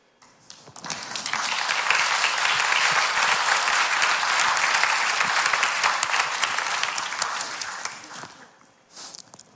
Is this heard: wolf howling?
no